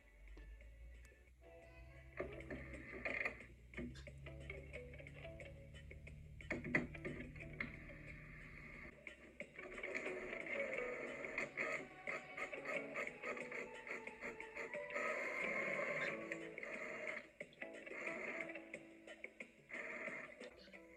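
A printer runs through a print job: a low mechanical rumble with scattered clicks, then a busier, steady whirring and grinding as the paper feeds through. There are no voices.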